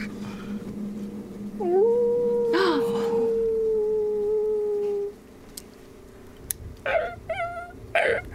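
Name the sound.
imitated wolf howl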